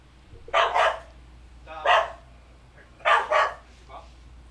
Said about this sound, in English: Pausing for dog.